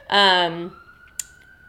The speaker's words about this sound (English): Hold for siren.